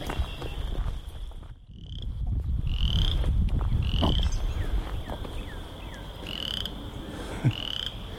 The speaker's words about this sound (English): Just a really enthusiastic frog there.